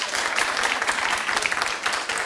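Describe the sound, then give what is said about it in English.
A roomful of people claps steadily for a couple of seconds, a dense, even patter of many hands at moderate volume with no one speaking over it, clapping in answer to a call to clap if they had looked at the hacked Jennifer Lawrence pictures. “Clap if you've looked at Jennifer Lawrence's hacking pictures.”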